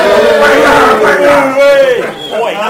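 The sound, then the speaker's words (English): A small group of Crystal Palace football fans lets out a loud, sustained cheer together, rising and falling over a couple of seconds before trailing off. “Cheer.”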